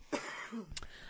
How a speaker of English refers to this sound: You fucking stop coughing?